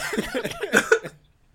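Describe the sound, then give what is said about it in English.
A person coughs in a quick, rough run of several bursts lasting about a second, fairly loud, then everything goes quiet. “I don't know, but you keep coughing”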